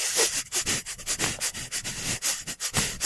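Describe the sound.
Rapid, repeated sniffing in short bursts, like a wolf snuffing at two streaks of some substance on a page, a busy breathy rhythm of quick inhales and snorts, fairly loud and continuous with no talking.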